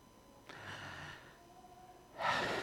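A slow, deliberate deep breath: a long airy inhale, a brief pause, then a louder, breathy exhale. No one speaks.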